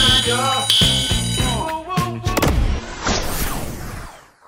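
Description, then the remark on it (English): A carbon monoxide alarm sounds with shrill, high-pitched electronic beeps, two stronger ones early on, amid a busy jumble of other sounds and a loud rushing burst near the end. “The CO2 alarm.”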